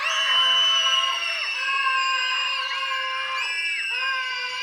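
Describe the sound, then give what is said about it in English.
A large group of children yells together at full volume on a count of three, trying to out-yell the adults, in one sustained, high-pitched roar lasting several seconds, with voices wavering and overlapping before it eases slightly. “I'm going to count to three, and the kids are going to yell as loud as you can.”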